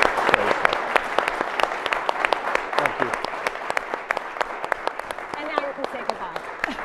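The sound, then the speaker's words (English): An audience at CSIS applauds a colleague going back to Australia, many hands clapping in a dense, crackling wash with sharp individual claps poking through, sustained at a fairly even loudness throughout. “You need to clap for this gentleman right here.”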